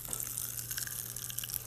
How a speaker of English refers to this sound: Okay, we got, as I mentioned, Pop Rocks, watermelon popping candy. This is incredible. We're going to try it out, and you should listen. Oh, yeah. Magic. I hear it. It's like a good concert.